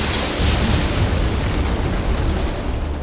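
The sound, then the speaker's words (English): A heavy, thundering crash of lightning striking a cave entrance and the cave roof collapsing, rocks tumbling down to block the entrance, a loud continuous rumble with deep booming lows and gritty crackle that roars steadily for about three seconds and fades only slightly. “The lightning continued to streak across the sky. It struck the entrance to the cave.”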